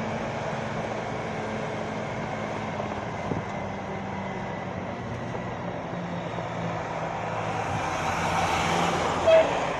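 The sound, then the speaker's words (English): Steady, continuous road noise from a moving vehicle on a highway, with a low engine hum, as the driver lets traffic pass and a passing vehicle swells louder near the end. No one speaks. “Sorry, I'm trying to let traffic pass us on the road here.”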